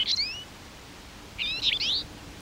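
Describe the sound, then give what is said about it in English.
Two brief bursts of a twite's high, twangy call, a short note near the start and a fuller cluster of rising chirps about a second later, fairly clear against a quiet background. “It's called a twite because its tweet is onomatopoeic.”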